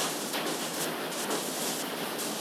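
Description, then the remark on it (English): Hail pelts a rooftop during a massive thunderstorm in a dense, steady hiss-like clatter, thousands of tiny impacts blurring into a continuous roar with occasional brighter surges, moderately loud throughout and no voices. “A massive, massive thunderstorm has hit, and hail is smacking the rooftop.”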